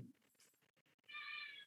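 A cat named Kitty James Dio lets out a loud, drawn-out meow, with a few softer chirps and rustles leading into it.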